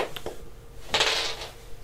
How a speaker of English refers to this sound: And then my die fell on the floor.